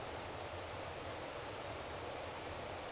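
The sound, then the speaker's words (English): A steady, soft wash of flowing water from a distant river among thick trees under a blue sky, with wild ferns and sunlight, continuous and even throughout, with no voices or other distinct sounds. “The river a little further away, and all of these thick trees under the blue sky.”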